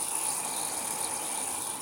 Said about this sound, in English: Yeah, this is the tea, the kettle that I have on. It's finally boiling.